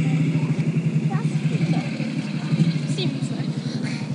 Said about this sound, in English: Yeah, so that would have been one of the motorbike couriers.